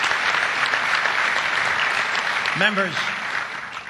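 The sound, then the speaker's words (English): Sustained applause from a large audience welcoming guest speaker Paul Martin, former Prime Minister of Canada, a dense steady roar of clapping that fades slightly toward the end, with a brief voice rising over it near the close. “Members of the head table, including the one who seems to have gotten more applause than I did, sponsors, ladies and gentlemen”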